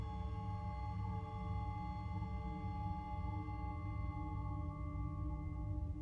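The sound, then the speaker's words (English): A steady electronic beeping tone holds for several seconds, a layered, buzzy pitch with bright harmonics over a heavy low drone, loud and unbroken, with no voices. “In front of you, you hear a beep.”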